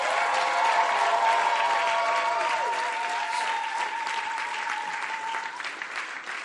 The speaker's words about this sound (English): Give the Lord a mighty hand clap offering.